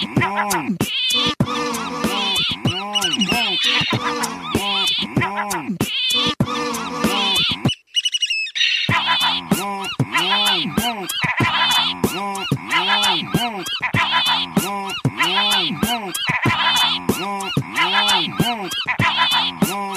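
Raspy, croaking Cassin's auklet calls repeat in a steady, dense rhythm, woven into a loud music track, with a brief drop-out partway through before the calls and beat resume.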